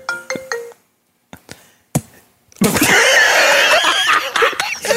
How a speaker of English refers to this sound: Phone